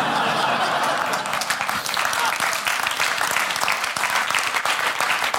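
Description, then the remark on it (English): An audience bursts into steady, loud applause, a dense wash of many hands clapping that holds evenly for about five seconds with no voices on top. “I have only 12 minutes, so don't clap and don't laugh.”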